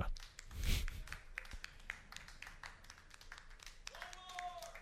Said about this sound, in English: No, not you guys. Just us applauding ourselves.